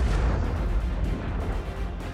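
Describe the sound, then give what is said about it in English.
A deep, continuous rumble from a jet exploding high above rolls on for a couple of seconds, loud and heavy in the low end, with a rough, crackling texture and no voices. “The sound from the explosion finally catches up to me.”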